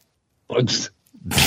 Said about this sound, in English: Bless you.